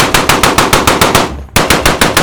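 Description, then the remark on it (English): A loud barrage of rapid automatic gunfire aimed at a metallic flying saucer, with bullets ricocheting off it. The sharp shots come in a steady fast rhythm, breaking off for a brief moment before the burst resumes. No voices are heard. “Skeet adjusted his aim until the barrage of lead hit the seam where the top and bottom of the saucer counter rotated.”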